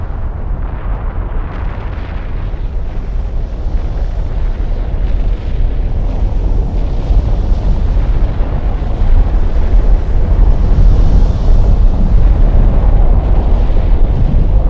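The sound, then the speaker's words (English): A continuous deep roar of the Nyiragongo volcanic eruption of 17 January 2002, as fissures tore through its slopes and magma poured out, with dense low rumbling, crackling bursts and a steady loud intensity that swells slightly. No voices are present. “On the 17th of January 2002, at 5 in the morning, fissures suddenly tore through the slopes of Nyiragongo.”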